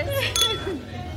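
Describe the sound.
Wine glasses clink together in a quick toast, a bright ringing chime, with voices murmuring underneath, at the Black Wine Experience during Essence Festival in New Orleans.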